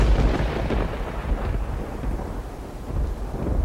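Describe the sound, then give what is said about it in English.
A deep, continuous thunder rumble rolls through the whole stretch, heavy in the low end and fairly loud, with a steady hiss of rain beneath it and no voices. “The light from a lightning bolt, it's always before we hear the sound waves of the thunder.”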